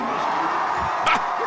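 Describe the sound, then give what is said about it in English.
A dense, steady roar of a cheering crowd of supporters of former President Donald Trump at CPAC in Orlando fills the whole clip, with scattered whoops and shouts rising out of the noise and one brief sharp burst near the end. “To a crowd of raucous supporters at CPAC in Orlando, former President Donald Trump spoke for nearly 2 hours, running back some of his campaign trail hits and going after President Joe Biden for his policies.”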